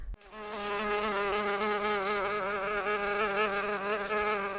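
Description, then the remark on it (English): A steady, droning insect buzz with a slightly wavering pitch, rich in harmonics, holds at an even loudness for several seconds without any voices. “Yeah, but and there are other insects that seem to spoil people's summer.”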